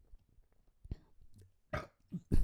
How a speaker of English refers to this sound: Ew, that was a nasty burp.